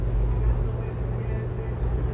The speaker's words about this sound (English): And right now I'm very present that a car just turned on in front of me. This guy's got his windows open, jamming. Let me see if I can catch on to it.